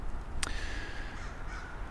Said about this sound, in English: So, the crow, yeah. I have mixed emotions about crows. They're a lot like people.